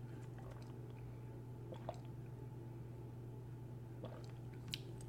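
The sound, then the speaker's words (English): Soft sips of water: a couple of brief wet slurping clicks, one early and another near the end, over a steady low electrical hum with no talking. “Let me get a sip of water.”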